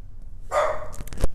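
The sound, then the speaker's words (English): A dog outside the room barks once in a sharp, drawn-out bark, followed by a couple of quick clicks and a thump. Moderately loud, with no talking. “swear to God, this dog is not even in the room, and he already senses me.”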